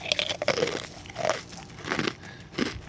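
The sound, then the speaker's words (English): Crunchy food being bitten and chewed, with a series of sharp, crackling crunches at an uneven rhythm and no talking. “This was like crunchy bones, like Jeffrey Dahmer earlier.”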